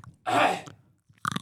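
Close-up crunching of a crispy snack right at the microphone, a loud wet bite followed by a pause and then a burst of sharper, crackly chewing.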